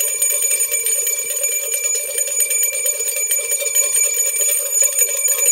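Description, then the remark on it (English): A bell rings loudly and steadily for several seconds, a bright metallic clatter with sustained high tones and no pause, with no voices. “It's a Two Bell Tuesday.”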